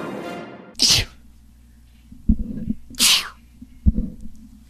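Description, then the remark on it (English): Two sharp, loud sneezes about two seconds apart, each bursting with a harsh hiss, separated by dull low thumps and a soft breathy rumble underneath. “This is the sneeze remix.”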